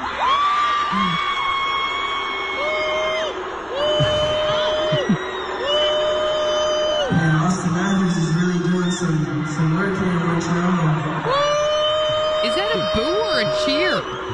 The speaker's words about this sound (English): It's a French boo. That's a booing is like a national sport in Quebec. It's a high-pitched boo. It's amazing.